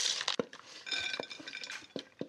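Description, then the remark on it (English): Paprika mayo being stirred in a bowl to coat the food evenly, with a spoon scraping and clinking against the sides in quick, irregular taps that leave a bright ringing tone. No one speaks. “So we'll pour it right over the top and I'll stir it around and get them nice and evenly coated.”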